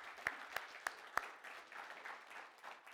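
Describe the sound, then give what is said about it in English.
A church audience gives God a round of applause: a few sharp, evenly spaced claps lead into a steady, crackling wash of many hands clapping together at moderate volume, with no talking over it. “Let's give God a round of applause again.”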